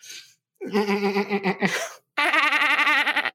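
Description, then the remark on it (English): A human voice imitating a dolphin: two nasal, warbling squeals, the first wavering and trailing into a breathy rasp, the second higher and steadier with a fast trill. “Was that more of a dolphin than a friend rusher? It's somewhere between the two.”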